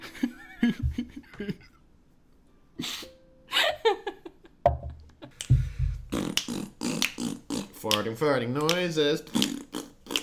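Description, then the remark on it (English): Someone blows loud raspberries with their mouth, imitating farts in a run of sputtering bursts mixed with giggles and silly vocal noises. “Farting noises.”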